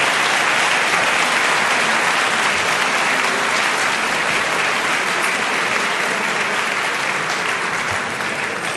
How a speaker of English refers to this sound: I just want to invite a round of applause for them for what they did.